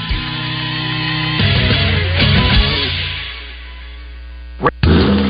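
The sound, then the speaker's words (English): A 2023 Chevy Silverado pickup truck's TurboMax turbo engine runs with a steady, loud low drone and layered humming tones that rise and shift midway. A brief sharp burst comes near the end, and no one speaks. “That's the sound of the 2023 Chevy Silverado and its TurboMax engine.”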